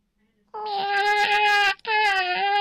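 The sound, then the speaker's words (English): A person imitates a cat's 'I need help wiping' meow with two long, whiny, drawn-out calls, loud, the first stretching over a second before a brief break and the second rising again. “Okay, this is the most important meow for me. And it's the I need help wiping meow.”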